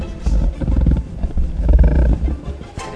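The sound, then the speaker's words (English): A deep, rumbling growl from a large animal, sustained for about two seconds with rough, throaty low-pitched texture, fairly loud, ending with a brief softer breathy huff. “Sound like a polar bear growl there.”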